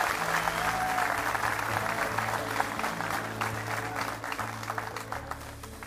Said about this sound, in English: If you believe that, give the Lord a clap offering.